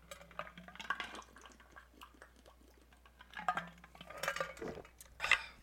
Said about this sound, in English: His water bottle is loud as shit. It just jangles around, all the ice in it. So I feel so obnoxious walking around with it